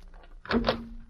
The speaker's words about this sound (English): The morning after the fire found Ben Stevens rapping on the door of Lem Wiley's home.